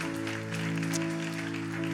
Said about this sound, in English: Come on, church, give God some praise. Clap your hands right now for all these that have responded by faith.